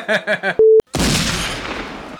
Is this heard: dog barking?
no